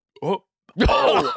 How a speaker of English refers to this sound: Another crazy secret burp. Another crazy secret burp. It's what happens to me.